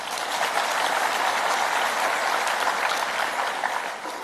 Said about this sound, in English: Thank you for the music that you've been playing in the background. Well done. Let's clap hands for them.